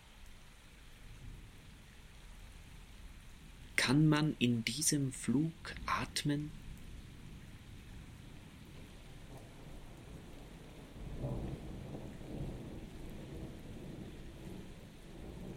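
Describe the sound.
Steady rain hisses throughout while a voice speaks briefly near the start. Later a low, rolling rumble of thunder swells up beneath the rain and lingers to the end.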